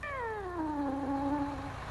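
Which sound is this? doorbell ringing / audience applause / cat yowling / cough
cat yowling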